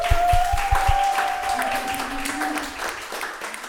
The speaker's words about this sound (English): So if everybody could just give a round of applause for my guest,